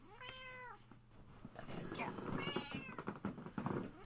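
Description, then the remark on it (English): A cat meows, a clear rising-and-falling cry, then a second drawn-out meow about two seconds later over a busier, rustling background. “Okay, let's get this kitty on the move.”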